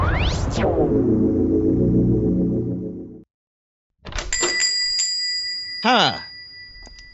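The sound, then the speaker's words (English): A comic shop door opens to a jingling bell chime, with bright ringing tones that sustain and fade, following an earlier burst of sweeping, humming tones and a short silence. “No, the door does work. It is opening.”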